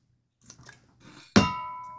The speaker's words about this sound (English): Whoa. It changed from like a Siberian gong to a... Well, that time it... to a Chinese gong real quick. I glanced off my water bottle. So that was a real Bing.